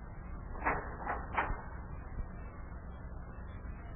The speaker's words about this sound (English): Open the door to Yuki's office and walk right on in.